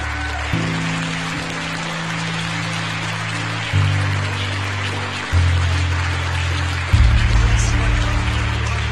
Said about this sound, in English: We do have confirmation of observatory separation. The James Webb Space Telescope, amidst applause here in the Mission Control Center, now taking its first steps in pursuit of cosmological discovery.